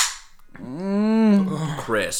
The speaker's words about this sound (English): I will crack it, and I will take some sips, and then I will down it in a little bit once I'm not full of carbonation.